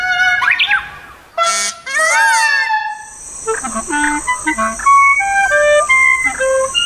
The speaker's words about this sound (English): I have to say, sometimes it makes your head spin, but nature is so versatile, and like you would discover bird song that you would not think imaginable.